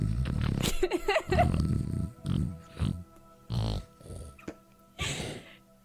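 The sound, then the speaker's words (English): A voice imitates loud, exaggerated snoring: a run of rough, snorting bursts, uneven in rhythm and separated by short pauses. “loud snoring noise.”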